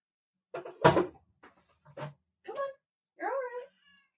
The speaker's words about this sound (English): Are you mad because the door's closed? Okay, but you're fine. That is not a happy cat sound. Okay, you know what? Let me just open the door for you, kitty.